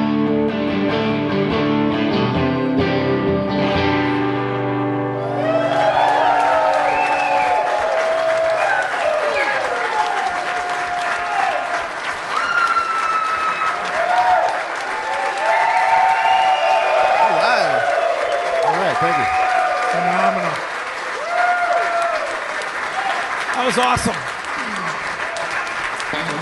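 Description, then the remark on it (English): A band's final chord rings out, then an early morning audience in a pool area erupts into sustained, loud applause and cheering, with many high whoops and shouts rising above the steady clapping for over twenty seconds. “I don't know if it's because we're in the pool area and it echoes, but you guys might be the rowdiest early morning audience we've ever had.”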